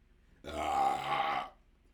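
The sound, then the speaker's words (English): One long, loud burp after drinking beer, lasting about a second, rough and throaty with a low, buzzing pitch, starting abruptly and fading out, with no talking around it. “That beer is about to come back up.”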